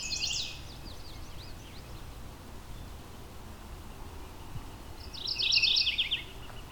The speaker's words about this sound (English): Chestnut-sided warblers, there's enough disturbed area here for them to enjoy. Not often I've come across multiple in one spot so readily. So you think a bird this loud would be easy to find. High up in a tree somewhere here.